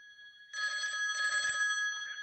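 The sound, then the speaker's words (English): A telephone rings with a bright, trilling electronic bell, loud, starting after a faint steady tone and continuing without pause to the end. “I will just answer the phone and I wonder who it could be.”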